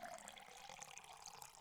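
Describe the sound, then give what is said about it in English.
Liquid is poured out in a steady, splashy stream, moderately loud, running continuously for a moment with no voices over it. “I would like to pour one out for our fallen comrade, Drunk History.”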